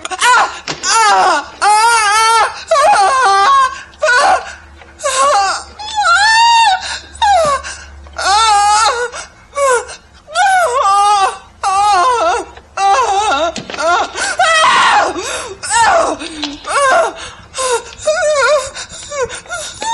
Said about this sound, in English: Her squeals of fear and pain are utterly ceaseless in their intensity, often looping the same screams.